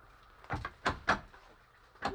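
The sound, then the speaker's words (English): A wooden door falls off its hinges in a few heavy, hollow clunks and scrapes, bunched together, then a final knock after a brief pause. Not loud, with no voices. “The door's fallen off its hinges.”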